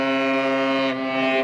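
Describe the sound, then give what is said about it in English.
A Russian cargo ship passing through the Bosphorus at Istanbul, on its way from a Black Sea port, sounds its horn: one long, steady, deep blast rich in harmonics, loud and continuous for the whole moment, with a slight dip in the upper tones partway through. “A Russian cargo ship announcing it's passing through the Bosphorus waterway on its way from a Black Sea port to international markets.”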